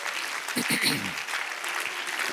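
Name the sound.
audience clapping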